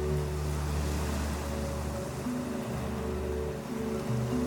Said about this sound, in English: Look out at the waves and the sea, and see the beach you are slowly headed towards, off in the distance. Hear the calls of the seabirds, and hear the waves gently lapping against the ship.